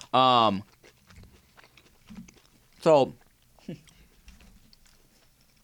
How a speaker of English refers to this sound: hold on, guys, just chewing. I don't want to chew all in your ear if you're listening to the podcast. Just a little dead air.